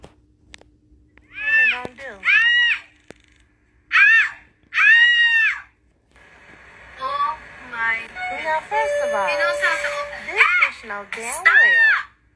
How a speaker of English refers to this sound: Her screaming and hollering is not going to help the situation. This bear don't give a fuck about her or what the fuck is going on, okay?